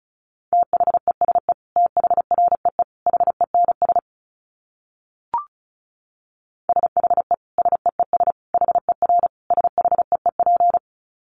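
Fast Morse code at 35 words per minute: a steady mid-pitched tone keyed into quick dits and dahs, sent in two bursts separated by a few seconds of silence and a brief click.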